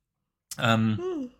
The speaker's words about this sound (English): The first yawn of the podcast. In my defence, I'm very bored.